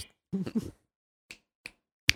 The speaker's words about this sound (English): Yep. A little snap and point. You got that.